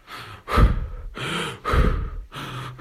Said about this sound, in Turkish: Derin. Nefes alıyorum.